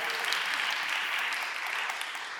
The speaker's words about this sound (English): Thank you. It was like a little pitter of kind of applause.